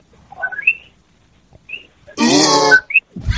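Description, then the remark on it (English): A single loud, harsh, throaty cough lasts about half a second, preceded by faint, high squeaky sounds, with another rough burst beginning right at the end. No one speaks. “Sorry, I was coughing.”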